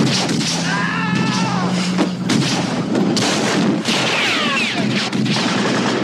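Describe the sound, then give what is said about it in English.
Loud .30-30 Winchester rifle gunshots, recorded live and used unprocessed as the Indiana Jones gunshot sound, crack out several times, irregularly spaced, inside a dense, busy mix with rising and falling whistling tones and a steady low rumble underneath. “The actual Indiana Jones gunshot was a .30-30 Winchester rifle that was recorded.”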